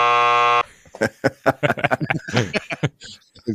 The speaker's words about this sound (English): Let's go ahead and hit that buzzer while we're at it. If I can find it, there it is.